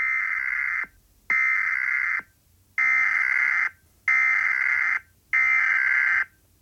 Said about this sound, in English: Do a really long beep. No, it's that'll be funnier than cutting it out.